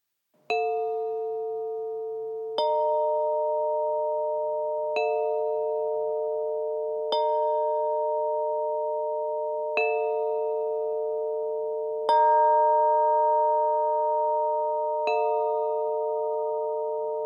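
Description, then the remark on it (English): A slow sequence of bright metallic chime strikes, about seven in all, each ringing out with a long sustained tone that overlaps the next. Clear and fairly loud, with no voices. “Now, here are the chimes.”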